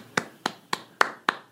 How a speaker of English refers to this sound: Why are you applauding?